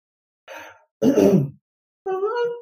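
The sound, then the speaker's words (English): A person yawns: a short breathy intake, a louder open-mouthed gust of breath, then a drawn-out voiced, moaning exhale. There is no speech. “I just yawned and didn't find out how we're gonna go.”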